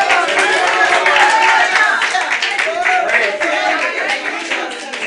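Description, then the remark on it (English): A standing church audience claps and cheers loudly and continuously in praise of Jesus, dense rapid handclaps mixed with raised voices shouting and whooping throughout, full for the whole stretch. “Come on, make a joyful noise. Yell, scream, clap your hands, do something.”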